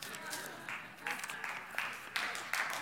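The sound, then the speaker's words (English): A church crowd at Transformation Church claps and applauds, a steady wash of many hands with a few louder swells, voices cheering faintly underneath throughout. “You know, some of you are like, I want to clap, I want to get excited, but I'm not sure.”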